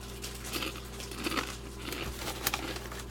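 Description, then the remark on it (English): A bag of Ruffles Double Crunch honey mustard potato chips is opened, crinkling and crackling in a series of irregular, bright rustling bursts, with a sharper pop near the end, over a steady low hum. “Opening up the bag, they do smell pretty damn good.”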